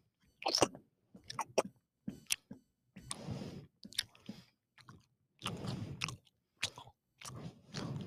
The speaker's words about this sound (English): This is ASMR chewing noises.